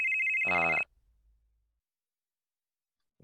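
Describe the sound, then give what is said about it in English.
A phone ringtone for an incoming group call from Loki to the whole team sounds once in a short, bright electronic burst, fairly loud, with a steady high tone joined by a richer chiming layer before it cuts off into near silence. “So everyone's phone goes off.”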